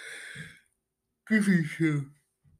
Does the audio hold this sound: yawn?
yes